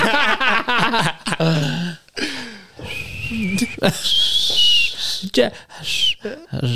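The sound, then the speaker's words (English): A woman attempts to whistle, producing thin, wavering high tones broken by breathy air and pauses, while voices talk and laugh. “Whistle, baby, whistle, baby.”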